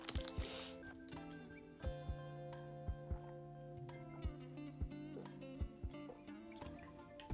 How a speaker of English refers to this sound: Did you hear me drinking? Don't ask what it was. It wasn't no damn water. It was Gatorade this time.